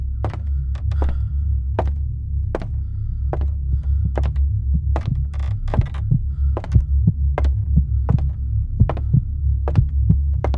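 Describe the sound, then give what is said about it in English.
A heartbeat sound effect, accidentally triggered on a soundboard, pulses steadily throughout, its repeated dull thumps sitting over a loud, low droning hum. No one speaks. “I think you accidentally hit the heartbeat sound effect on the soundboard.”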